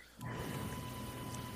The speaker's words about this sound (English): I feel like that was like a gross, like forced burp. I'm sorry, guys. That was really bad, dude.